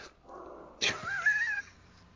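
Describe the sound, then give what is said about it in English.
A dog, unhappy about a visiting dog, lets out a single vocalization, a sharp onset sliding into a wavering, high-pitched whine that lasts under a second, fairly loud against a quiet background. “We have a visiting dog over, so it's making the existing dog not happy.”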